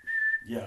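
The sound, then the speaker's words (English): A person whistles a single short, steady, high note, mimicking a referee's whistle blast, and then a voice starts talking right after it. “And then they blow the whistle.”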